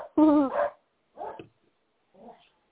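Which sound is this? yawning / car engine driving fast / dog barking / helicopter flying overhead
dog barking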